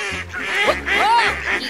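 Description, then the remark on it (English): Several raspy duck quacks come in quick succession at a pond, fairly loud, with a brief pause between bursts and no talking over them. “These are pretty safe foods for ducks.”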